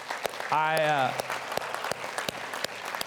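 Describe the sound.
An audience in a church claps steadily throughout, dense, with a single voice letting out a short whoop near the start, applauding a couple.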